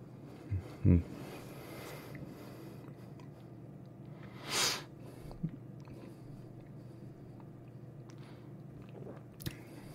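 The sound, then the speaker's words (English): A single short slurping sip of a 13-year-old, 46% whisky, the second and slightly bigger sip, preceded by a soft knock and followed by a couple of faint clicks, all set against a quiet, steady hum. “So let's go in for sip number two. I'll take a slightly bigger one, I think.”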